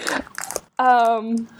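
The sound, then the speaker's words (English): Crunchy bites and chewing of a chocolate bar in quick, irregular bursts, then a short pause and a sustained voiced hum or drawn-out vocal sound. “I think you should eat it. John had a bunch of Hershey bars today.”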